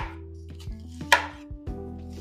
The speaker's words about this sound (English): Okay, I'm gonna cut this in half. Yeah, that's what we're gonna do. Cut that in half, put it on its side. We're gonna dice it up.